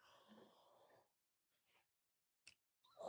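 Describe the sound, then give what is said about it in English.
A forceful, breathy sneeze bursts out for about a second, followed by quieter breaths, a sharp click and the start of another noisy sound. “And I've been criticized about sneezing into my hands.”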